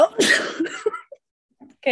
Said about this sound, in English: Bless you.